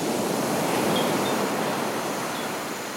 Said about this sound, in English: or even when the animals are being quiet, you can hear the loud crashing waves onto the beaches of the Osa Peninsula.